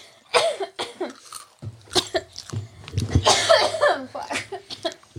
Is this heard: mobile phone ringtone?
no